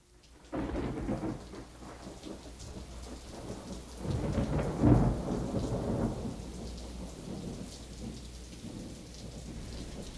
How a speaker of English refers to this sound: As I stand here at my window, peering outside in the cold bleakness of this rainy Sunday afternoon, you come into my thoughts.